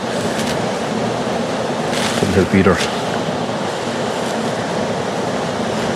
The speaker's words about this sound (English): Just that wind is cold.